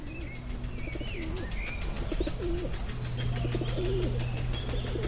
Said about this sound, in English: Loads of pigeons. Hi, guys. I'm just standing in the middle of, I don't know if you can hear the flutter of the wings, so many pigeons.